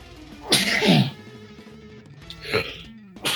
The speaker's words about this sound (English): Oh, sneezes. God damn.